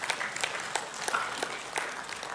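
An audience claps steadily, many overlapping hand claps forming a dense, crackling wash of applause with occasional sharper individual claps standing out, at a moderate level with no talking.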